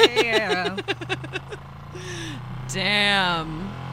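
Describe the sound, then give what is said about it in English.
A Sybian vibrator motor running on a low setting gives a low, steady rumble that drones continuously, like a small engine idling, while a woman's voice rises and falls over it in breathy exclamations and a drawn-out vocal sound. “Oh, that Sibian is something. Oh. That's an interesting setting. Nice and low. Wow, okay. It's like I'm riding a tractor.”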